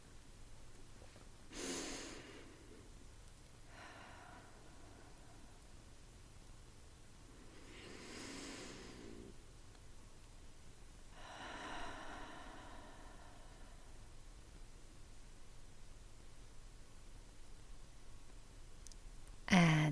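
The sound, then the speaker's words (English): Slow, deep belly breathing for relaxation: two paired rounds of long, airy inhales and exhales spread over about fifteen seconds, with quiet pauses between and no talking. “Really try to let your breath fall into your body, into your belly, so that you get out of this really shallow breathing.”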